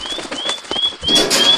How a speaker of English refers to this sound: It's a blue bird warbler. Bluebird warbler.